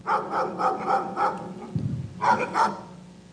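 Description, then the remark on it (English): A dog barks repeatedly: a quick run of sharp barks, a short lull, then two more. No one speaks. “feed the dog.”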